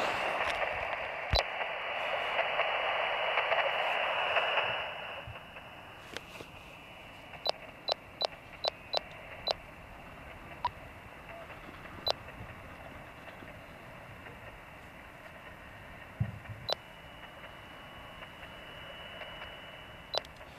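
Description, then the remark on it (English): A radio tracking receiver scanning through bird tags for signals, checking whether any tagged birds are coming in: a steady hiss of static that drops away after a few seconds, then a run of sharp, evenly spaced clicks and a few scattered blips. “Whilst we've been talking, I'll just go through the tags that we're still waiting to hear and see if we can detect any birds coming in.”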